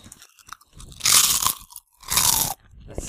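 Loud crunching of a snack being chewed, two bursts of dry, brittle crackling separated by a brief pause, with faint mouth sounds in between and no talking.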